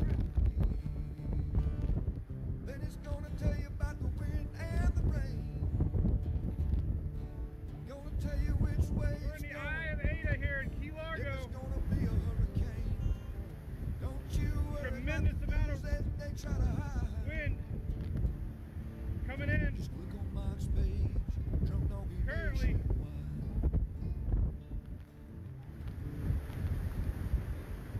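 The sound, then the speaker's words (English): Loud, continuous storm wind roars outdoors and buffets the microphone in heavy gusts beside a truck, rocking the truck and bending the trees sideways, with rumbling low-end noise throughout and occasional brief voice-like or bleating sounds breaking through. “You just wouldn't believe how much rocking the truck is doing.”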